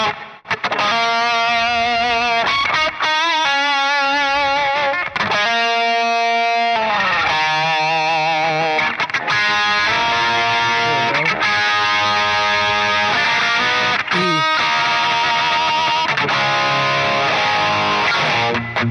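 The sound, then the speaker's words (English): A lightly overdriven electric guitar, played through a low gain lead amp preset, plays a melodic lead line with sustained, vibrato-laden notes and bends, steady and loud throughout with no talking. “So low gain lead. Low gain lead.”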